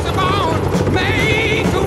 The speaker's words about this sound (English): Then you need this. Hanging out the side of a chopper, looking down on rice paddies.